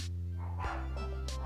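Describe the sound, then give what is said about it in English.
A dog barks in short, sharp yelps, about three of them spaced across a second and a half, fairly faint and set against a steady low electrical hum. “Even the dogs barked on that one.”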